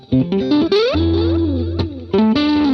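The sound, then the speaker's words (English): Distorted electric guitar playing a short phrase of bending, sustained notes through a delay pedal, loud with no voices, the notes ringing into one another. “I actually, instead of reverb, sometimes I prefer a delay because I feel like it takes a little bit of character from what you're playing and it uses it instead of like just having reverb through the whole thing.”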